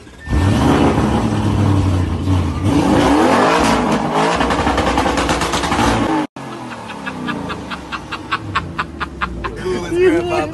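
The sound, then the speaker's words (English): A car engine revs loudly, its pitch climbing and surging over several seconds, then breaks into a series of sharp, rhythmic bursts of revving after a brief cut. “I want to DM and be like, bro, take care of your engines, please.”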